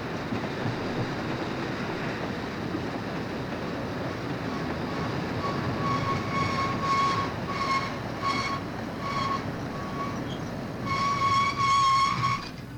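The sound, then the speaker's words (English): A train rumbles heavily along, then its brakes let out a series of high metallic screeches in short bursts, ending in a louder, drawn-out squeal as it judders to a stop 100 yards before the frontier. No voices. “The train judders and screeches to a halt 100 yards before the frontier.”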